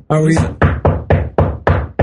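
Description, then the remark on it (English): Loud knocking on a door: six or seven firm raps in a quick, slightly uneven rhythm, with a brief voiced sound overlapping the first knock. “Who's that at the door? Should I get it?”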